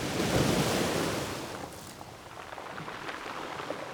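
Ocean waves at Las Cruces wash in with a broad, hissing roar that swells early and then recedes into a softer, steady surf, with a touch of wind noise and no voices.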